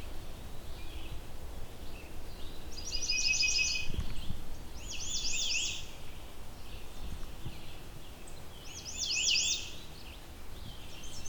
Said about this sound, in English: Redstarts have all kinds of variations on their warbling.